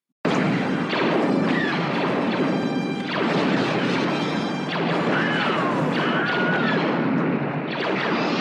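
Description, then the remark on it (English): Dense, continuous battle noise of crashing and sweeping laser-blast effects, with the Wilhelm scream, a short high-pitched scream that rises and falls and almost disappears into the loud, busy mix. No one speaks. “There's a lot of laser blast sounds going on, and the Wilhelm scream almost blends in with the soundscape”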